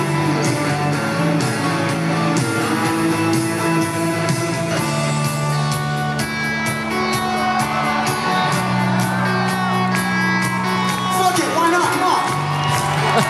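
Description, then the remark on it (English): A live song plays loud and full, with sustained singing and instruments over a cheering crowd; the crowd's steady, even four-on-the-floor claps join in about midway and keep a regular beat to the end. “And like start everybody, you know, they do the four on the floor clap along with everybody.”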